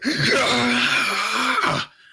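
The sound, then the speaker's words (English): A single loud, raw scream rises and holds for nearly two seconds, harsh and strained, then cuts off abruptly into silence. “Burbage, in the meantime, is trying to get a sense of where the rageful scream came from.”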